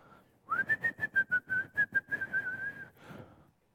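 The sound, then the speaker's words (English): A person whistles a sustained, slightly wavering high note in imitation of a bird, lasting a couple of seconds, with a steady rhythmic pulsing beneath it and no talking. “Are they worried? They're whistling.”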